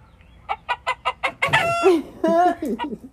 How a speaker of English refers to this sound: Okay, a chicken clucking. Specifically laying an egg. It's a hen.